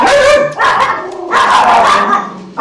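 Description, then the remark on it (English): Several dogs indoors bark and yip excitedly at other dogs outside, in quick succession, loud, their harmonic barks overlapping in a continuous burst with a whiny edge. “Yeah, the inside dogs are barking at the outside dogs because they're acting.”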